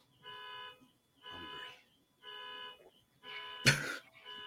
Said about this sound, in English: Why do you call it an alarm going off when it clearly goes on?